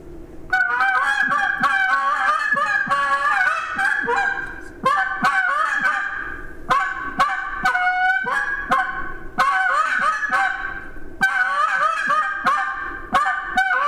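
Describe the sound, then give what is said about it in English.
A handheld goose call blown in rapid bursts of loud, nasal honks and clucks, closely mimicking a goose flock, with brief pauses between sequences. No talking. “But anyway, this is a goose call here.”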